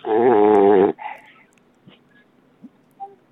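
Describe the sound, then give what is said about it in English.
One loud, rasping, throaty snore from a man with sleep apnea, lasting about a second, followed by a long stretch of near silence broken only by a few faint small noises as his breathing stops. “He stops breathing for a hot sec and then he struggles to breathe again.”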